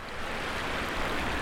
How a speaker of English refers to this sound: I'm balanced on a wooden walkboard near the base of Lake Logan Dam, where 6,000 gallons of water per minute rush into raceways filled with rainbow trout. Yeah, it's a beautiful sight, that water coming over.